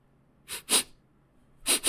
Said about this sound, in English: Is that? Sniff.